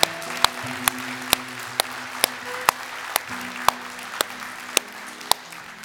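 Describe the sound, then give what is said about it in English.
An audience applauds for those who said yes to Jesus, with sharp claps landing in a steady, even rhythm over a dense wash of clapping, while sustained low musical chords play underneath. “And could we just give a round of applause to anyone that said yes to Jesus today?”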